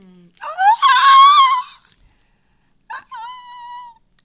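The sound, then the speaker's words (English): A voice strains for a very high whistle note in two attempts: a long, wavering squeal that climbs and holds, then a shorter, thinner sustained tone after a pause. “Mean, all you need is the whistle note at that point.”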